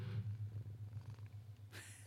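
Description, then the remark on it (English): A black cat named Vienna Bean purring, a low, steady rumbling hum pulsing continuously throughout, fairly soft, with a brief rustling noise near the end and no voices. “Maybe you heard her purr. She's a black cat.”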